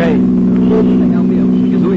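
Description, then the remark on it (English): A car engine drones loudly as the car chases another car to force it over to the curb, holding a steady, heavy hum that edges upward near the end, with faint voices over the motor. “Catch that car.”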